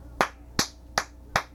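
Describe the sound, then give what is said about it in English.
Four slow, evenly spaced handclaps, sharp and fairly loud, sound on their own with no voices, answering a call for a big round of applause to be measured on an applause meter. The sparse, lone clapping is nothing like a full crowd's applause. “To show you what I mean, let's have a big round of applause for me, Mr. Invento.”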